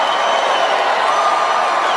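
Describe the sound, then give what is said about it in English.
A large crowd in a room applauds and cheers in a dense, continuous roar that stays loud and steady throughout, lasting a couple of minutes, with no break and no clear voices standing out. “these applause went on for a couple minutes.”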